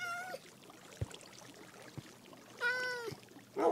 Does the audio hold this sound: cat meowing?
yes